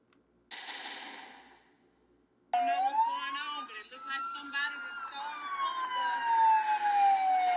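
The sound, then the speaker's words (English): Several police sirens wail loudly, their overlapping tones sweeping up and down, after a brief burst of rushing noise with a short pause; nearly the whole police force is chasing a speeding school bus. “This nigga had damn near the whole police force on his heels.”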